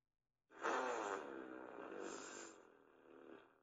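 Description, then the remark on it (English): A loud, drawn-out fart sound effect plays from an Amazon Echo Dot smart speaker after a spoken request, a buzzy, sputtering blast lasting about three seconds that fades slightly toward the end, with no talking. “Alexa, make a fart sound.”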